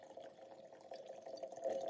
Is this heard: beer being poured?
yes